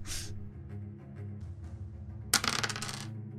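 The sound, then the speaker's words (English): Dice clatter across a table in a sudden burst of sharp, rattling clicks that settles within about a second, rolled for initiative, over a low steady hum, with a short hiss at the very start. “Everyone, let's roll initiative.”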